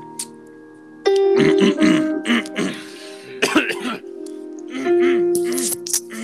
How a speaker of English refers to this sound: Whoa. Excuse me. Just gotta clear my throat.